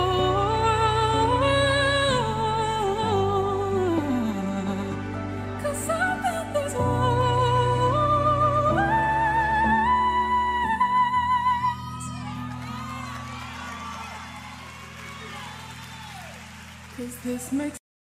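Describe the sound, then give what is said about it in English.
A woman sings a sustained melody that climbs to a high note, then a church crowd erupts in scattered hoots, whistles and cheers that carry on loudly for several seconds. “She sort of hits this high note and they all, you know, not all of them, but they cheer and hoot.”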